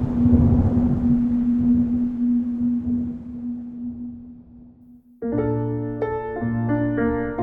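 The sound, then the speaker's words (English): Storm wind at the Beetham Tower in the early hours rushes with a steady droning hum running through it and slowly fades, recorded with a microphone stuck out of a car's sunroof. Then a sudden cluster of sustained, overlapping, organ-like whistling tones takes over and holds. “It was storming one evening, really early hours.”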